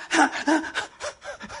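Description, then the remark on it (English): A voice imitates the quick, heavy panting of a primary school boy who ran home: about six breathy, voiced huffs in rapid rhythm, fairly loud, with no words spoken. “He was panting.”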